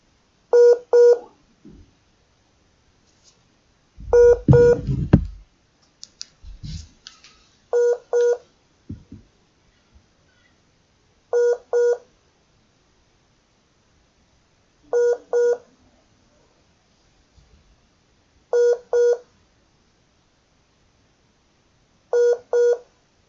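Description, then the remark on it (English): Telephone tones sound as short double beeps repeating at steady intervals, clear, with a brief rumbling knock near the start and no one talking, as a dropped phone call is being reconnected. “Technology these days, guys, lost them that. Gonna have to try and reconnect.”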